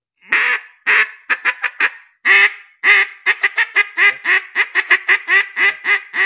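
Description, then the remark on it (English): A turkey hen call blown on a mouth call: raspy, nasal yelps, a few spaced notes at first, then a quick steady run of many loud yelps, with no talking. “So you'll be tongue twisted when you're trying to do the two different hens to start with.”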